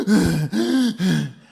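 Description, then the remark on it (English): A voice imitates panicked heavy breathing, recalling the panic felt after capsizing a kayak about 300-400 metres offshore: three quick, loud, rasping gasps in a row, each with a strained, groaning tone, with no words spoken. “And I felt myself going into panic. I could hear the sound of my breathing.”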